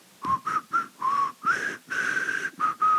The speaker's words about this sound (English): It's so echoey and it's its own song. That's great. I don't know how to whistle.